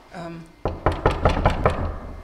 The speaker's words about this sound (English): If you don't mind, I'm going to knock on the door and just see if there's anyone here today.